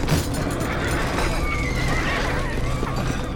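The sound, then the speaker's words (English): Horses neigh and whinny in high, wavering cries over a steady rumble of galloping hooves as centaurs race over to dance around guests, the whole scene loud and continuous with no voices. “The other guests shrank back as the centaurs raced over to dance around them.”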